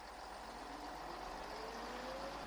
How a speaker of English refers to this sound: I head to work. I'm on the bus.